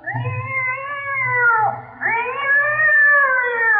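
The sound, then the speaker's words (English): A cat lets out a loud, drawn-out yowl after its tail is stepped on, wavering in pitch, dipping briefly midway and then rising again into a second shrill, sustained wail. No one speaks. “I told you not to step on that cat's tail.”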